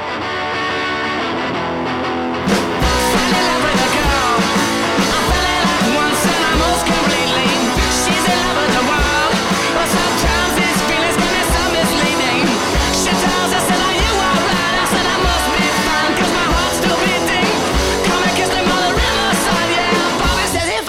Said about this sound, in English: This song is pretty wild. It sounds like it's all over the place, but just give it a listen, all right?